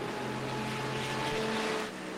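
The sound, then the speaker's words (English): A race car engine roars steadily and loudly, its tone climbing slightly as it accelerates through the gears coming up the hill from Bergwerk, with no voices over it. “Accelerating through the gears as he comes”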